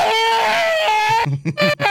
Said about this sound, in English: Oh, wait. That means I haven't done my Rotgrind screaming.